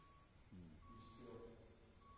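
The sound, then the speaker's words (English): A dump truck's reversing alarm sounds steady, high-pitched beeps during a sermon, one long tone and then another starting, faint over a low rumble, while someone briefly talks underneath. “And I can see the dump trucks just coming.”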